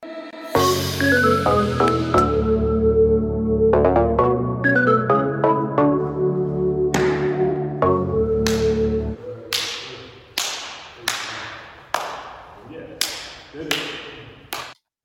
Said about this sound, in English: All right, let's slap hands.